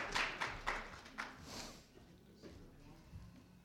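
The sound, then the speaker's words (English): A short burst of scattered audience applause for a volunteer, a few sharp claps in the first second that quickly fade, fairly faint, with indistinct voices murmuring underneath. “Everybody clap”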